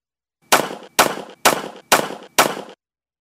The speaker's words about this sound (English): Gunshots is the second one. Fireworks is the first.